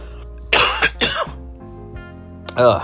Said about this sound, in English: I'm coughing.